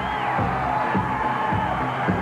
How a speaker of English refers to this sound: Let's take a look at the ring. Look at the crowd. You believe it? 19,000 some odd thousand people standing.